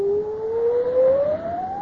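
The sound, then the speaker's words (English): A storm wind wails aboard a ship bound for Galway, sustaining one eerie, keening tone that slowly climbs in pitch across the whole stretch, loud and unbroken like a woman's mournful cry, with no voices present. “It is but a whistling of the wind.”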